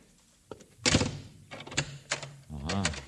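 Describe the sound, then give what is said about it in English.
A front door swings shut with a solid thunk and a few rattling knocks of the latch, moderately loud, followed by a brief voice. “I want to shut the front door, that's all.”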